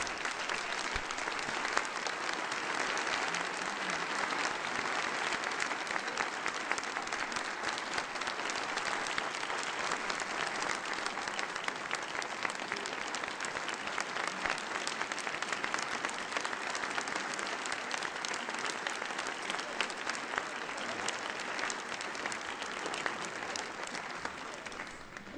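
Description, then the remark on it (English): A large audience at Church of the Palms claps steadily and warmly for about twenty-five seconds to honor a church member, a dense, sustained wash of applause from many hands, with no voices standing out above it. “would you please stand, Nancy, and would you let us applaud you?”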